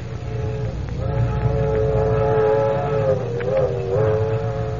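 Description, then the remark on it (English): A passenger train with a sleeping car of green curtain berths rumbles steadily along the rails, a continuous low roar with a wavering tonal drone riding above it, fairly loud throughout, with no voices. “Walking quietly up the narrow aisle of the car, between 2 rows of green curtain berths, Clark Kent cannot help but pass drawing room C, the one, as you remember, occupied by Mrs.”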